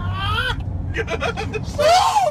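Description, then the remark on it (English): A man screams in fright because a snake crawled under his windshield wipers and into his car's engine compartment, letting out a wavering cry, a quick burst of panicked yelps, then another rising shriek, all over a steady low vehicle rumble. “There's a man screaming because a snake crawled underneath his windshield wipers and into his engine compartment.”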